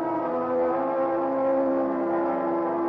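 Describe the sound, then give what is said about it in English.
A car cruises steadily along a highway with light traffic, through Santa Monica, then Santa Barbara, past Pismo Beach toward Morro Bay, its engine holding a continuous, even drone with a low humming tone throughout, fairly loud, with no voices. “Thanks to an excellent highway and light traffic, I made good time through Santa Monica, then Santa Barbara, even past the famous Pismo Beach.”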